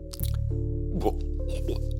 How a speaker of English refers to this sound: Chew. Go on. Have a little chew. Chew the fly. Ooh, disgusting. Ooh, why did you chew the fly? Filthy man.